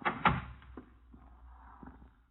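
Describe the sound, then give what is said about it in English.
A door is opened: a sharp knock of the latch and handle, followed by a few faint creaks and soft thuds as it swings, then quiet. No one speaks. “This door.”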